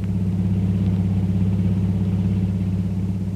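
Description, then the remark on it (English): A long, powerful car's engine rumbles steadily as it drives through the winding streets of Singapore's waterfront, a deep, continuous drone holding an even pitch throughout with no voices. “An hour or two later, a long, powerful car twists its way through the winding streets of Singapore's waterfront.”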